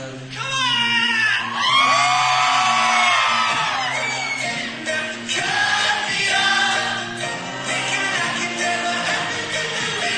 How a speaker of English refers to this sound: It's cool because you can hear the crowd singing too.